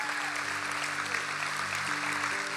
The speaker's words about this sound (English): Come on, let's clap for everybody that made that decision.